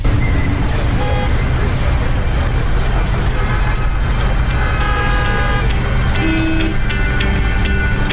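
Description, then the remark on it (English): Dense, loud street traffic rumbles continuously while several car horns honk in short bursts, with a cluster of toots near the end and faint voices mixed into the din. “While some of us are delayed by traffic and chores, excruciating pain from sickle cell can also cause delays and lead to the hospital.”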